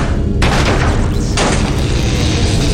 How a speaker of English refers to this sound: Sparks exploded around me, just as another blast sounded.